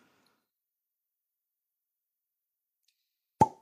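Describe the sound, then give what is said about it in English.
A gin bottle is uncorked with one sharp, loud pop after a stretch of near silence, the hollow snap dying away almost instantly. “Nice pop.”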